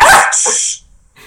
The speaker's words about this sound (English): Sorry, he's getting excited. Come here. A lot of dog cameos in this. Yeah, yeah. There's a couple. That's Captain Picard.